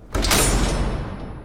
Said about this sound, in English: I burst through the swinging doors.